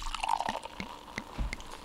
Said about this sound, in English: Ah, perfect. That's what I like. I like the champagne. It had a little. I like it. You hear the little. You hear the fuzz. Bubbles. Yeah, it's nice.